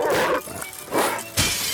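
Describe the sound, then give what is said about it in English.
Three loud bursts of window glass shattering in quick succession, each a harsh, hissy crash with a brief lull between, as windows of non-subscribers' property are broken in the computer game Paper Route. No one speaks. “But earn points for breaking windows and damaging the property of non-subscribers.”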